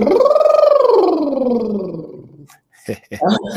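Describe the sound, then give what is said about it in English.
A loud, buzzy lip trill done as a voice warm-up exercise swoops up in pitch and then glides steadily down over about two seconds, like a small siren, before a person begins speaking. “So a few exercises, one of them, it's the lip trill. So you want to start low, trill up to a higher pitch and come back down, kind of like a siren, and I'll demonstrate.”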